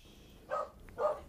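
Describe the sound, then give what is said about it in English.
Two sharp dog barks spaced about half a second apart, moderately loud, with a quiet background and no talking. “The second Kaiser is barking.”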